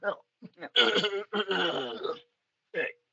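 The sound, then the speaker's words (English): A person clears their throat before reading aloud, in several short, voiced bursts: two quick grunts, a longer rasping stretch, and a final brief hack after a pause. “Let me clear my throat.”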